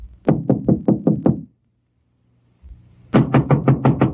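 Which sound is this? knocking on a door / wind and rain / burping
knocking on a door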